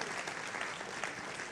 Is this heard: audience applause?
yes